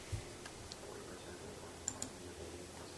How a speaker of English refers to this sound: Well, I'm typing in our new website.